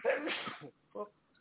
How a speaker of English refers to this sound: Sneezed. Must have COVID.